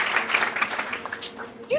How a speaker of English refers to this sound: Clap it up for his hustle.